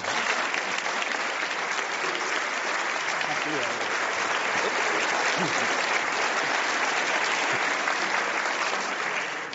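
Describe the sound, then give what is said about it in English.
Sustained audience applause welcoming guest Oz Guinness, a dense steady wash of many hands clapping at an even loudness for nearly ten seconds before tapering slightly at the end. “Without further ado, please give a warm Socrates round of applause to my friend and guest, Oz Guinness.”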